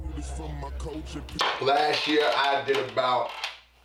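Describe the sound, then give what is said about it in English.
An old stool squeaks and creaks as it shifts, giving a string of wavering, strained squeals over a low hum, with a few dull knocks in between. “Now y'all can hear the squeaking and y'all see it's the stool. Man, it's an old stool.”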